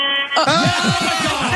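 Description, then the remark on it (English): A Wawa fuel truck horn from North Wildwood: a loud, sustained blast with a rich buzzing tone, quickly shifting into a wavering, warbling series of rising and falling pitches that carry on to the end. “The horn honk is awesome.”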